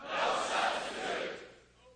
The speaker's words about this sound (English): I'm going to make a statement. When I do, you shout, no substitute. Ready? No substitute.